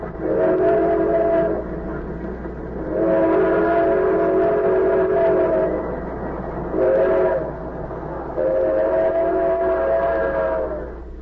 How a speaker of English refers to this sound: The train roared through the night, and one by one the slits of light under compartment doors blinked out as travelers went to their berths.